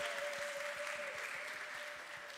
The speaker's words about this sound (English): Kids, I want you to get a better view. We've got a lovely big space, so come on down and let's fill this space. Should we give our kids a cheer as they come on down this morning?